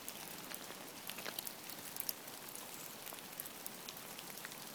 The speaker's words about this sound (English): And the drip, and the roll, and the drip. December rain.